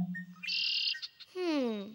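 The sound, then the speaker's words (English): A single red-winged blackbird song, clear: a short buzzy trill followed by a rich, harmonic call that slides slightly downward. No one speaks. “On my left, red-winged blackbird.”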